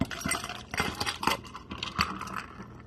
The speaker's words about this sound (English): And pour over ice.